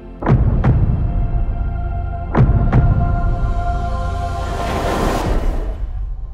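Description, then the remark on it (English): Two deep heartbeats, each a paired lub-dub thump, about two seconds apart over a low, steady rumble that swells into a rushing whoosh toward the end. “So what does her heartbeat sound like?”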